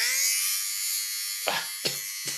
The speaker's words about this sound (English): I bought a lint shaver. I need one of those for the couch.